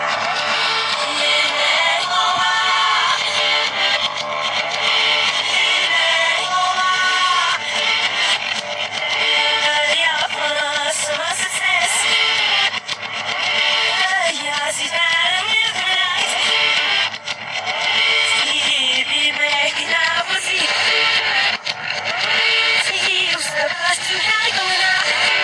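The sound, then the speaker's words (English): An eerie, possessed-sounding song plays loudly and continuously for the whole stretch, with warbling, wavering vocal lines sliding over a dense, steady backing and no one talking over it. “It actually did sound a bit possessed, that song.”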